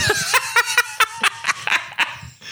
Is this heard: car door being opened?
no